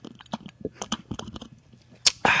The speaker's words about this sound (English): I'm gonna take a sip right here so everybody can hear it.